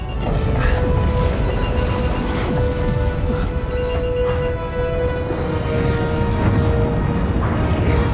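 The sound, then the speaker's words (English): A loud, sustained explosion roars with a heavy low rumble and crashing, whooshing bursts as the shockwave rolls through, over a steady humming drone that never lets up. “Another explosion. There's a shockwave this time.”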